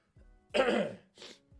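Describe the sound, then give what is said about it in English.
A person coughs twice, a loud harsh hacking cough followed by a shorter, weaker one, with a throaty rasp at the start and end. “I have no idea what is happening with my throat today, man, but I am coughing like a fucking pensioner.”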